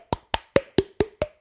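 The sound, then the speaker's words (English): Seven hollow, slapping pops from smacking the cheeks to make a funky beat, struck in a quick, even beat with a slight tonal ring that shifts in pitch from hit to hit. No one speaks. “You can snap your fingers, clap your hands, bang a table, do that thing where you kind of smack your cheeks and it's like...”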